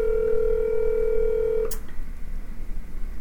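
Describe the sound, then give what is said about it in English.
A steady electronic telephone tone of an outgoing phone call hums for about a second and a half, then cuts off with a sharp click, leaving quiet line noise. No one speaks. “So let's give her a call. And I am calling her right now.”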